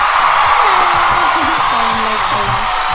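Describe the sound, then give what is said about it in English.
A loud, steady roar of crowd cheering greets a co-host arriving in a studio, filling the whole clip, with scattered whoops and shouting voices rising and falling over the dense wash of noise. “You're giving the big crowd reaction.”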